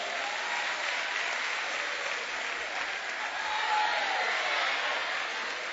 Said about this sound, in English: Thank you, my brother. Give him a hand clap.